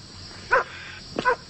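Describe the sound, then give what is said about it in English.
A dog barks twice, short sharp woofs about half a second apart, clear against a faint steady background hiss; played on KDWB radio as the bark of a famous dog, Lassie, in a name-that-dog quiz. “I'm going to play the dog for you.”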